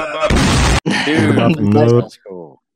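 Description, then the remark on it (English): A voice imitates an explosion with a harsh, noisy burst, followed by a drawn-out, voiced rumbling sound. It is loud, then trails off into a short, softer vocal tail. “Dude, you're going to have to put a little explosion effect after, right when that happens.”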